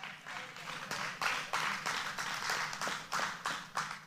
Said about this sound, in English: This is kind of where the clapping stops, okay? So I'm going to give you hands a break. I'm not doing it, but you don't have to worry about your hands for a couple of verses here, okay?